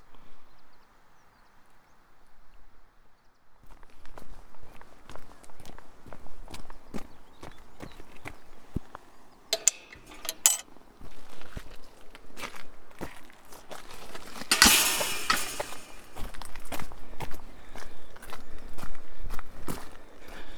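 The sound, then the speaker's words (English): Steady footsteps walk away from Westward Ho along the old trackbed of the Biddeford to Westward Ho Railway, a regular crunching rhythm of roughly two steps per second that starts after a few quiet seconds and carries on to the end, with occasional brief rustling bursts. “I'm leaving Westward Ho on what was once the trackbed of the Biddeford to Westward Ho Railway.”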